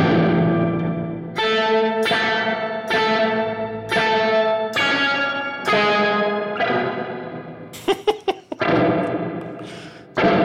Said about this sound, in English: No original signal, all wet spring reverb with the octave up and down.